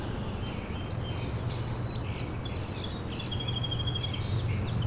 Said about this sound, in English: That was a northern perula, it's right in front of me. That rapid trill ending in a zeet.